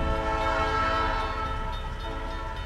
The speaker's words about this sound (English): It's a freight train, too.